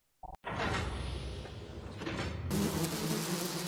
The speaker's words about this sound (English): A swarm of bees, each the size of an emperor penguin, as over time, the station has become a gigantic beehive.